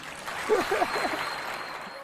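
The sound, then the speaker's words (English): A short burst of crowd applause, a steady wash of clapping from a mid-sized audience with a few voices calling out in the middle, lasting about two seconds. “This dude, and you can clap after I say this, he was the best football player ever.”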